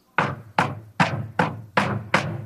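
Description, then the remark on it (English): Six heavy, evenly spaced, loud knocks on a front door, each thud ringing briefly before the next in a steady, insistent rhythm with no voices. “Now, I don't know about you all, but at 5 o'clock in the morning, someone's doing that at my door.”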